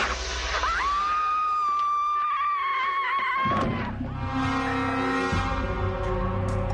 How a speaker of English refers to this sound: She wanted to do a movie, and she could really scream.